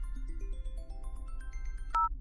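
A phone ringtone plays a quick ascending run of bright electronic notes, clear, then cuts off with a sharp click as the call is picked up.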